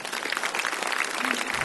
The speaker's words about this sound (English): So let's all give a round of applause and welcome Pastor Mark this morning.